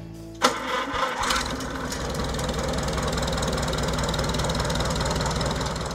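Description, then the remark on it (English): A 1948 Oliver 60 tractor engine in Kansas cranks over and catches, then settles into a steady, loping idle with a rhythmic low chug, fairly loud, with no voices. “This is a 1948 Oliver 60.”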